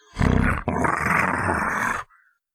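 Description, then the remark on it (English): A loud snarl from a human voice imitating a wild dog: a short guttural burst, then a longer raspy growl lasting about two seconds before cutting off. “It's a snarl. It's like, it's like, you know, it's what I imagine a wild dog would sound like when it's tearing apart a, you know, a piece of roadkill.”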